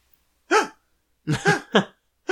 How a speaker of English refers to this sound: She's gonna hyperventilate.